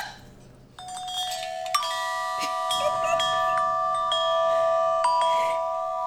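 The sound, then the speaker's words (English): Wind chimes ring out clear, a cluster of metallic tones touched several times and left to shimmer and overlap, sustaining steadily with no one talking. “Are you gonna play wind chimes?”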